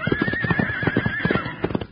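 A spooked, mistreated horse lets out a long, shrill, wavering whinny, loud, while its hooves clatter in quick, uneven beats underneath, sounding agitated and restless.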